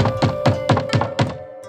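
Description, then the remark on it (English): About six quick, evenly spaced knocks rap on a wooden door as dawn breaks, each a dull, solid thunk, with a faint steady hum underneath and no voices. “Then, as dawn broke, someone knocked at the door.”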